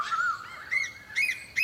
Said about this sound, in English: Ooh, a female coel has just flown onto the power line next to the male. Can you hear them calling to each other? They sound different. The male is making that longer call, which is a bit faster now the female's shown up. He's excited.